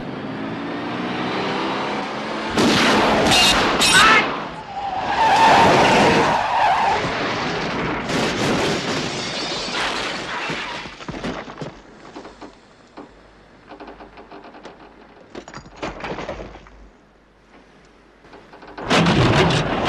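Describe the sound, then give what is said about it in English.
Tyres screech in a long, loud skid, followed by heavy crunching impacts and scraping debris as a car goes over an edge and tumbles, then a final loud crash near the end. No one speaks. “Oh, you mean the kicking the car over the edge?”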